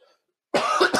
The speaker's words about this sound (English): Apparently that's going to be one of those days today. I wish I had a cough button like I do when I'm calling broadcast, but anyway, moving on.